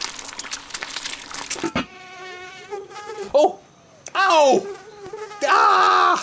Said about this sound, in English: A mosquito bit me!